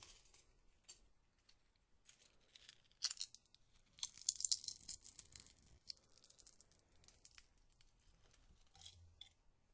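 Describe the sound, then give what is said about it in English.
Five fresh, minty tea leaves are torn by hand and dropped into a cup: a series of crisp, crackling rips and crinkles, quiet at first, then a denser flurry of sharp tearing in the middle, tapering off to a few soft snaps. “We'll take 5 more leaves and do the same thing.”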